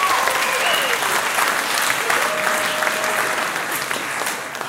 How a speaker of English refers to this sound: All right. Give them a bit of a round of applause as they go off.